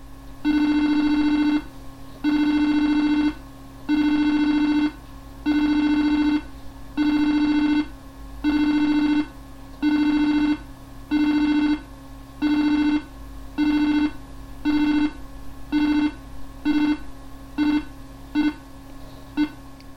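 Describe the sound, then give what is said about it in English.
A long run of loud, buzzy computer beeps from a server's beep command, at one steady pitch, evenly spaced at first, then coming shorter and quicker toward the end, with no voices. The number of beeps marks how many directories are left to sync during a backup. “At the time, I thought it might be good to have some idea how far along a backup was, so this again was signalled with the beep command. The number of beeps indicated how many directories were left to sync.”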